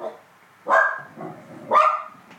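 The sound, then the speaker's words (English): A dog barks loudly, two sharp, forceful barks roughly a second apart, followed by the start of a fainter third bark at the very end. “Hold on, the dog's freaking out.”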